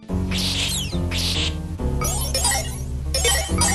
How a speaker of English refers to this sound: You get that great sort of sound quality of like empty wine glasses clinking up against each other, but that's like the treasure noise in Castlevania 4.